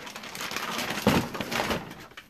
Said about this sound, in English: Yes, family, I just was moving some water around, but my honey is straight from the bees.